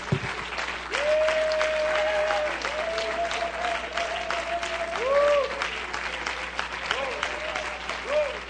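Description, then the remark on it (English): An audience at a church service claps hands in sustained, dense applause as a hand clap of praise to God, running the whole length, with sustained voices or tones rising above the clapping at moments. “Everybody said, in Jesus' name, let's clap our hands and offer Him a hand clap of praise.”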